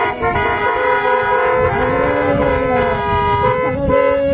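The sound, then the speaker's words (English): Many car horns honk at once at a drive-in church service at the close of a prayer, in a sustained, overlapping blare of steady tones at mixed pitches, loud and continuous for several seconds with no talking. “And everybody honk, amen.”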